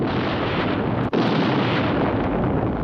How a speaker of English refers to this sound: Counting down to another big explosion.